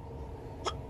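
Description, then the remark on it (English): A small sneeze, short and breathy, comes in two quick bursts close together, the second cut off at the end, over a low steady background hum with no talking. “Ooh, bless you.”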